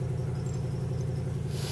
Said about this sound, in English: God, that exhaust leak I got to fix. I got a squeaking belt. No, it sounds great.